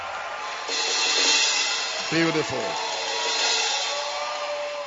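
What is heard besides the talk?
audience clapping hands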